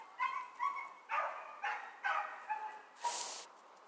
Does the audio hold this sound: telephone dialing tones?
no